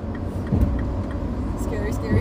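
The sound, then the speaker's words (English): A heavy, steady road rumble of a semi truck rolling alongside a moving car, the low engine and tire roar loud throughout, with faint voices briefly underneath. “Scary truck. We're on by a semi.”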